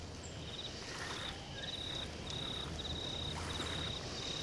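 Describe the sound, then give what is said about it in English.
Crickets chirp in a steady series of short, high-pitched trills, repeating over and over against a soft, low background hum. The sound is faint. “Birds chimed in, and soon crickets sang.”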